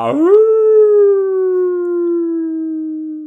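A single wolf howl swoops upward, then holds a long, steady, slightly falling note for about three seconds. The sound is clear and close, with no other noises.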